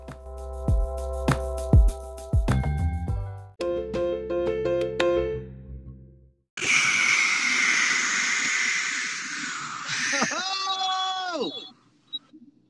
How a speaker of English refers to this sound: Very windy. Oh shit. I don't know if I can do the podcast because it's so windy.